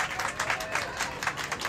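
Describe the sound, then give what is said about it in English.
An audience applauds for the experts, a steady patter of many hands clapping at once, dense and sustained with no voices over it. “Let's have a round of applause for our experts.”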